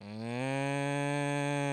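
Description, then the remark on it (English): A voice imitates a cow's low moo: one steady, droning murr held for under two seconds, fairly loud, with no other sounds or talking. “They're not so much a moo as a murr.”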